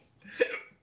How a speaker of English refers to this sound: You got the hiccups, bro? Yeah. I don't know why.